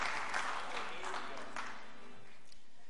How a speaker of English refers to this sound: Give the Lord a hand clap of praise this morning and you can be seated.